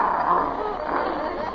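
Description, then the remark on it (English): A dog barks in a short, steady burst of sound, fairly loud throughout with no clear pauses between the barks. “Maybe she better do what the dog says.”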